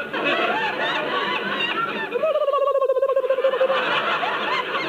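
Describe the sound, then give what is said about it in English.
Hiccups that come out as a quick, bird-like warbling trill, a rapid chain of pitched, clucking pulses lasting about a second and a half over a steady, busy background hum. “Yes, I have hiccups. But it sounded like a bird.”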